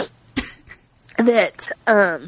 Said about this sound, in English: Hold on, I'm gonna sneeze.